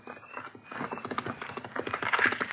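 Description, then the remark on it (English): Rapid, rhythmic clopping of a ridden horse's hooves, growing steadily louder as the horseman draws nearer, with no voices heard. “What horseman is that so close?”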